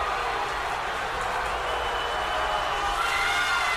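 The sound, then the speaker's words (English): A large concert crowd roars steadily, a dense wall of shouting, cheering and clapping that stays loud and unbroken throughout, with no single voice standing out. “took the mic to try and mollify the crowd.”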